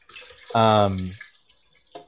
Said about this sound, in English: Is somebody going pee? No, I'm sorry. I'm filling up my water bottle.